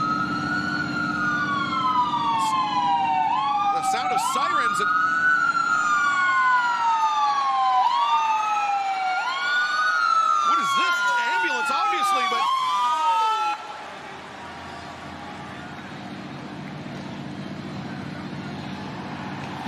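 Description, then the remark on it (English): An ambulance siren wails loudly in repeating rising-and-falling sweeps over a roaring wrestling crowd as wrestler Hangman Page arrives in a stolen ambulance, with a few sharp bursts mixed in, then cuts off abruptly, leaving the crowd noise. “Hangman stole the ambulance!”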